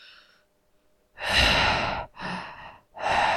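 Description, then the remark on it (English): Heavy, loud breathing right up against the microphone: a faint breath, then three forceful, rushing exhales in quick succession, harsh and airy with no talking. “Are you breathing on the microphone? Don't breathe on the microphone.”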